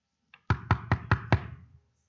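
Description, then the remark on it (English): A quick series of five firm knocks on a wooden door at night, evenly spaced, preceded by a faint tap, with no voices. “the relationship between friends or neighbors might not be enough to get someone to open the door”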